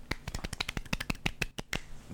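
Hands clapping into a microphone in a quick, slightly irregular burst of sharp, crisp claps, roughly a dozen in two seconds, loud and with no talking.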